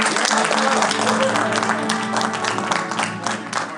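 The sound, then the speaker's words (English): Audience applause from the clapping scene of the film Birdemic: many hands clapping in a dense, continuous wash of sound that holds at a fairly loud level for several seconds, with a few sharper individual claps standing out. “More people clapping. Then it stops and it's the same people starting clapping again.”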